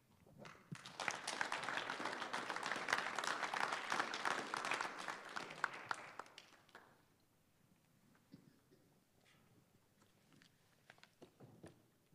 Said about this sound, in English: Why don't you give him another clapping offering for this morning?